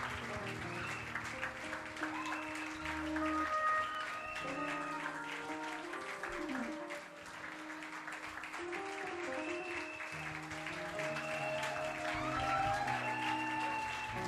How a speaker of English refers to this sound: Clap for them as they go this way.